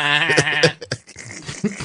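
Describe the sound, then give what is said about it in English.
A voice lets out a shaky, wavering bleat like a baby goat, lasting under a second and fairly loud, then quieter talking follows. “Valtra Meyer is a great, well, she's a dramatic soprano that also sounds like a baby goat.”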